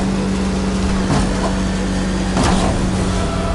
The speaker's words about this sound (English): the Batmobile finally catches up to the Joker and begins ramming into the back of the armored car